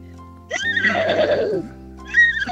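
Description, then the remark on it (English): A 14-year-old girl calling in by phone imitates a horse whinny: a loud, quavering neigh lasting about a second, then the start of a second whinny, with a faint background hum. “It's like there's a Palomino in the studio.”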